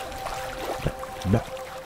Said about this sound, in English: Now, before we really get going here, just listen to those waves. Hear them?